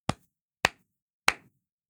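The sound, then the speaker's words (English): Three sharp hand claps ring out alone over about a second and a half, each a crisp, bright smack with a short decay, the third coming after a slightly longer gap. “Now, the easy way to line that up is before you start actually talking on your podcast, just give yourself a quick 3-clap, just one of these.”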